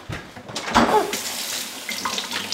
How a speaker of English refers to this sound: It was a place to feel safe doing everyday things, like rinsing an apple at the kitchen tap. You're gonna wash it?